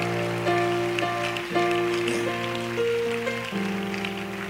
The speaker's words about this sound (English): Oh, you're clapping. I don't like it.